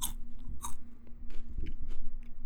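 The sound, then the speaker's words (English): Crunchy chewing, several crisp bites and crunches in an uneven rhythm over a low steady hum, with no one talking. “Get that good chewing in. That's a crisp sound.”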